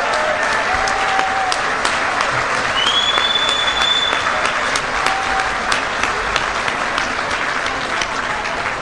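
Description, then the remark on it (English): An audience at the National Homebrewers Conference applauds loudly and steadily for several seconds after a meal, a dense wash of clapping with a few whistles rising briefly above it. “How about a big round of applause for Sean Paxton and that wonderful meal we just enjoyed?”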